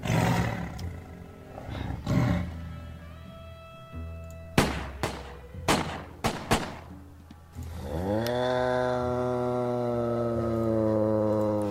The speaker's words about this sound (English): I heard you scream and the tiger growl. I knew you were in danger.